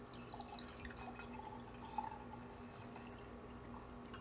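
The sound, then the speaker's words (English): Liquid being poured into a glass, heard quietly as a soft trickle with small dripping splashes over a low steady hum, and no voices. “Let me pour my glass on this episode, man.”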